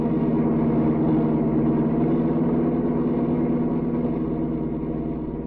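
A car engine roars steadily at speed as the car races down the mountains, a loud, continuous low drone with a rough mechanical hum that holds throughout and eases slightly toward the end. No one speaks.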